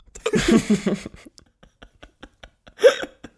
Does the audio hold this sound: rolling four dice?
no